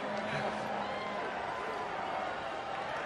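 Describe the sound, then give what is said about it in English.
The Washington Husky cheering section at Martin Stadium roars and chants "Whose house, dog's house?" together at a football game against Washington State, a steady, dense wall of voices that holds at full volume for the whole few seconds, with no single speaker standing out. “And guys, the Husky cheering section chanting, "Whose house, dog's house? Whose house, dog's house?"”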